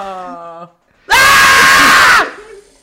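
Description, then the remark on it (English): A brief droning vocal tone gives way, after a short pause, to a loud, harsh scream into a candle that lasts about a second before cutting off, followed by a faint trailing sound. “Sometimes when I get mad, I scream into this candle.”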